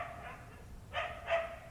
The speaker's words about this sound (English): It was only as I turned back to the cottage, among the sounds of waves crashing on the rocks and the wind sighing through the heather, that I heard the sound of a dog barking faintly far away.